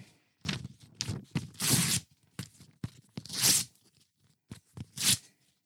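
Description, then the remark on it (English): A sheet of paper being ripped into pieces in a quick series of loud, crackling tears, about eight rips with short pauses between, with no voices. “Now it's in a million pieces.”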